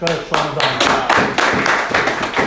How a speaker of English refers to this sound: That's why when I say Rabbi Ackerman, the clap is beautiful, Rabbi Ackerman.